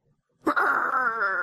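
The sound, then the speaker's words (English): A human voice imitates the growl of Lucario, a Pokémon: one sustained, buzzy, low-pitched snarl that starts abruptly after a brief silence and holds steady for about a second, loud and alone. “Lucario growled.”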